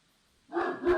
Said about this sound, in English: Oh, the dog. You got the dog.